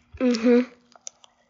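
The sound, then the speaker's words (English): A short hummed vocal sound, followed by a few soft, crisp crunches of someone chewing a big mouthful of Lucky Charms cereal, taken in about three bites in a row before chewing, spaced irregularly. “Did you hear that Lucky Charms bite? That was a big one.”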